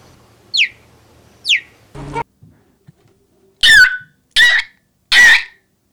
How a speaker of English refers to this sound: here's the cheetah again